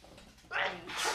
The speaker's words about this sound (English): I hope you guys are saying bless you when I sneeze.